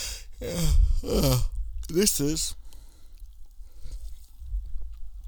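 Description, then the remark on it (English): A drawn-out, voiced yawn with groaning, wavering pitch, followed by a shorter second vocal stretch and then quiet breathy noise. “I'm gonna say that when I yawn from now on, because I always start yawning when I do this.”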